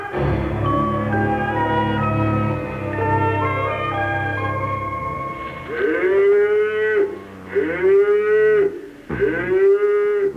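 Several cows moo loudly at 4 o'clock in the morning, their long, deep calls overlapping at first, then three separate drawn-out moos follow one after another with short gaps. No one speaks.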